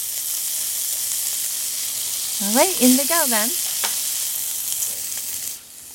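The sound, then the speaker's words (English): Steady sizzling of cicadas frying in a little pocket of hot oil, a bright crackling hiss that runs throughout. A person speaks briefly over the frying midway through. “I'm gonna create a little pocket here, add a little oil so that we could get some good sizzle sounds for the cicadas.”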